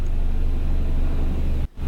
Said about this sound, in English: There's a long burr. This is a helicopter, isn't it?